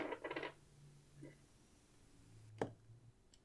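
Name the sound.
dice being rolled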